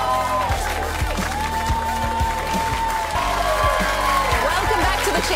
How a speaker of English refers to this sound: Please keep the applause going for the fabulous Emma Holland.